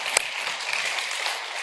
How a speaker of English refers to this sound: Yeah, we can go ahead and clap.